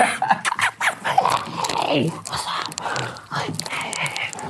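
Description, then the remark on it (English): A German Shepherd dog pants heavily in quick breathy bursts while gnawing and biting on a ball it won't let go of, with occasional low growly rasps mixed into the steady chewing. “We got the dog. What do you think of German Shepherds?”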